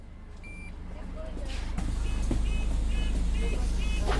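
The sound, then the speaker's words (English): Steady low rumble from inside a moving hybrid electric bus on the streets of London, with a run of short, evenly spaced electronic beeps chiming in the second half. “We're now heading through the streets of London on our lovely electric bus, or hybrid electric bus.”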